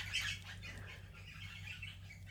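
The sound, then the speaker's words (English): Birds chirping outdoors, a steady overlapping chorus of high tweets and calls, fairly quiet, with a low steady hum underneath and no talking. “Can you hear those birds?”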